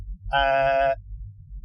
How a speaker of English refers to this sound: That's pretty much it. And the odd sheep.